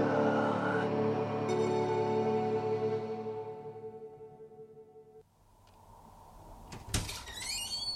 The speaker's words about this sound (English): Fire door.